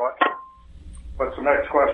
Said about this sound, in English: Okay, I don't know who's banging on their phone